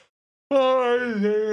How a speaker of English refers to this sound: There we go with the yawning. It's difficult to talk a lot when you're tired,